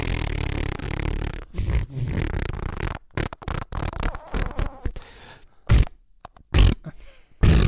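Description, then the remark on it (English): A long, loud fart from a man rushing off to the toilet rips out for several seconds, then breaks into a series of shorter sputtering bursts and pops before trailing off. No one speaks. “And as he rushed off to the toilet, he let out the manliest of longest of smelliest farts you have ever heard in your life.”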